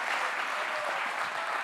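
A church audience claps steadily for the church's keyboard player, a dense, sustained wash of applause that stays at an even, moderately loud level throughout with no voices on top.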